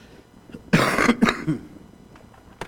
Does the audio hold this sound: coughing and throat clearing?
yes